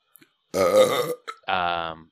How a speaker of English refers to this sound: Haha, I did the funny Rick and Morty man. I did the Rick and Morty burp man in the microphone. That wasn't silent.